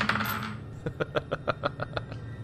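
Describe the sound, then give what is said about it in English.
A die clatters onto a hard table in a game, rolled to check whether a lieutenant notices missing keys, and lands on a natural one: a brief scrape, then a quick, steady run of about nine sharp clicks before settling. Clear, with no talking. “I'm going to make a quick little roll to see if the lieutenant ends up at some point noticing that the keys are missing.”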